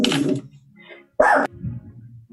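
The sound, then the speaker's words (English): A dog gives two short, sharp barks about a second apart. The second is louder and more abrupt, with some low murmuring sound in between. “The dog calls BS.”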